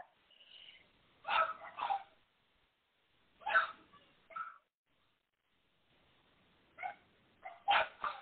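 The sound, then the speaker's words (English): Dogs barking in short clustered bursts, two or three sharp barks at a time with pauses between, moderately loud, with a faint whine or yip mixed in and no talking. “Can you hear these dogs barking by any chance?”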